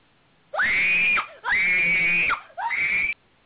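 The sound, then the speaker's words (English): A person's voice imitates a shrill, wild scream in three sustained bursts, the first two long and the last shorter, loud, with brief gaps between. “I think they all sound crazy when they scream.”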